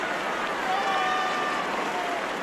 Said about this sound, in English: Christ, Jesus. What is that? Sounds like people screaming.